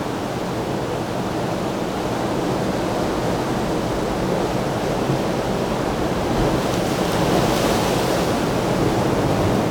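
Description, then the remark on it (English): Steady, loud roar of sea waves washing and splashing on rocks on a sunny morning, with a broad hissing wash that swells slightly near the end; no voices, just continuous surf filling the scene. “I'm getting the sea, the waves, as they splash through, they're getting kind of backlit.”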